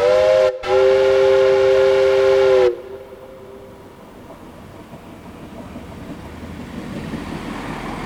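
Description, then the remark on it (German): A steam locomotive whistle on a sleeper train blows loudly in two quick blasts, a short toot then a long steady one, before cutting off and leaving a low rumble of train noise fading away. “Dann pfeift die Lokomotive ganz laut.”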